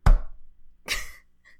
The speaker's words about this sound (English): I'm going to do the secret knock.